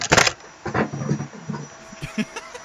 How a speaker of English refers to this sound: I think someone's vacuuming.